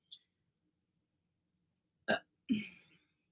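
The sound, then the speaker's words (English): Upset stomach sounds: a tiny faint blip, then after a pause a sharp, abrupt burst followed by a longer, croaky gulping noise, with no talking. “He gets quiet, trying to listen, but all he hears are the sounds of my upset stomach.”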